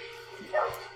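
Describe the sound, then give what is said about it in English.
A dog lets out a quick, excited bark and a high whimpering yip, moderately loud, over a steady background hum. “dog is really freaking out.”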